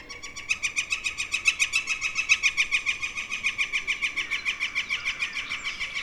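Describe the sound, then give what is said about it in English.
A northern flicker, a woodpecker, calls in the woods in a long, rapid series of evenly spaced, ringing notes, steady and carrying on for several seconds with no voices present. “A northern flicker.”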